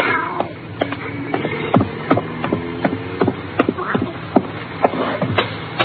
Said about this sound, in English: something jumped at me and landed in my lap. It was the cat.